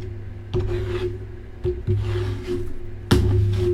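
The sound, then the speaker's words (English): A deck of tarot cards being shuffled: a steady papery rubbing and sliding, broken by a few sharp snaps and riffles, with a low steady hum underneath and no voices. “I'm shuffling again.”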